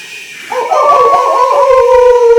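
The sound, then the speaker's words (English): A person howls like a wolf, one long, loud, wavering note that rises in quickly, wobbles up and down in pitch and holds steady to the end, with no talking. “Wolf.”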